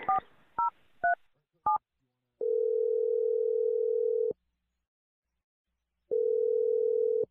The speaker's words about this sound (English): I'm going to dial his number right now and let you make your awkward Tuesday phone call.